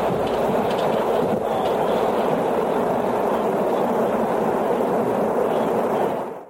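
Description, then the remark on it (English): Rocket engines roar at liftoff, a loud, dense, unbroken rumble that holds steady for about six seconds before quickly dropping away. No voices are heard. “Holding momentary. Ignition. 3, 2, liftoff.”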